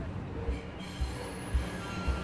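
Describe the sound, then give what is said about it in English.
A subway train rolls along with a steady low rumble, wheels thudding over track joints about every half second, while a faint metallic squeal whines above. No one speaks. “On the subway home, something about the fashion angle isn't sitting right with me.”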